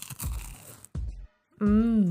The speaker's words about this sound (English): There you go. That was a nice crunch. Nice.